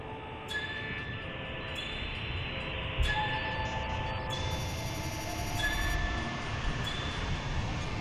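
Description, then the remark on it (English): A train rumbles steadily past southwest of the Highland Lines Railway Junction, its wheels giving off high, sustained metallic squeals and whines over the low, continuous clatter, with no voices. “Southwest of the Highland Lines Railway Junction.”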